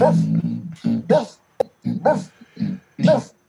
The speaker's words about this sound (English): Got my doggy, doggy, dog, yo. Barking in the living room.